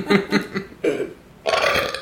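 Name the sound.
loud burp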